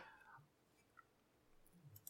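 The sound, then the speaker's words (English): A few faint, scattered keyboard clicks, like someone typing lightly on a computer keyboard at a slow, uneven pace, heard alone, as the term 'autonomous sensory meridian response' is typed in. “What it actually is, and I'm typing it in now, it's autonomous sensory meridian response.”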